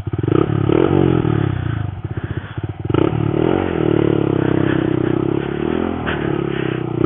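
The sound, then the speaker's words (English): A Honda Monkey mini motorcycle, ridden down a gravel track onto a riverbed, revs its engine with a loud, buzzing drone that rises and falls in pitch, briefly turning rough and sputtery midway before steadying again. No one speaks. “Okay, so I've ridden the monkey down onto the river.”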